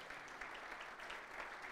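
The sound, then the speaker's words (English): Steady audience applause for Lee and Melinda's 28th wedding anniversary, a dense wash of many hands clapping at an even, sustained level with no voices standing out. “So let's give them a little applause.”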